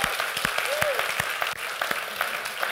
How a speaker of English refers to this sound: So, man, would you honor your pastors and just give them a hand clap for who they are, what God is doing in their lives?